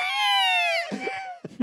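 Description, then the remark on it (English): A loud, shrill creature scream made from baboon screams rings out for nearly a second, its piercing tone sliding slightly downward, followed by short rough bursts of sound like fragments of a voice. “Which apparently they used baboons screaming for that.”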